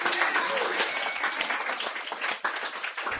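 An audience applauds steadily after a reading of Gertrude Stein, a dense wash of many hands clapping at a constant, fairly loud level throughout, with no voices rising above it.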